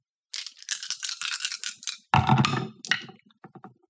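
Two yellow and two purple dice, rolled for an athletics check in a tabletop role-playing game, rattle briskly in a cupped hand for a couple of seconds, then tumble out with a louder clatter and a few scattered clicks as they settle. No voices are heard.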